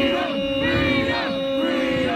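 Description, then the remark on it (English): A group of masked mock protesters chants "freedom" together in unison, loud, during an emergency drill at Pearson Airport, a sustained rhythmic crowd chant filling the whole moment without pause. “But here's the fake protesters practicing at Pearson Airport for an emergency drill.”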